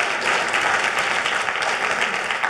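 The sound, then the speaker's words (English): A crowd applauds steadily, the dense patter of many hands clapping at once at a fairly loud, even level without a break, with no voices heard over it. “Yeah, you can clap, it's all right.”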